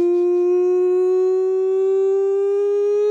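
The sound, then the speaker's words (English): A loud siren sound effect holds one steady, buzzy tone for about three seconds, its pitch creeping slightly upward, with no talking over it. “That is the nonsense siren.”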